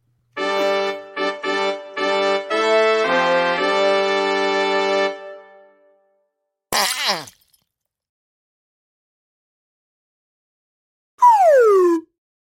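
A string of steady, buzzy tones plays a short tune, then a brief noisy burst, and after a pause a slide whistle swoops downward once in a smooth falling glide.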